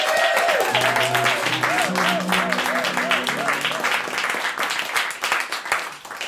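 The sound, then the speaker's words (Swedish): An audience claps loudly and steadily for several seconds to welcome a guest performer onto the stage, a dense wash of hands with a few whistles and cheering voices riding on top before the clapping starts to thin out. “Hon heter Paulina Palmgren. Ge henne en applåd.”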